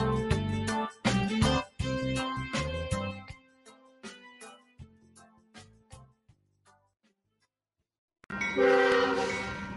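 A loud train horn blasts in several chords, then fades as the train rumbles past and recedes into near silence before another loud burst of train noise returns at the end.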